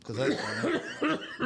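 A man coughs hard and repeatedly, several harsh, raspy bursts in quick succession, loud and close to the microphone.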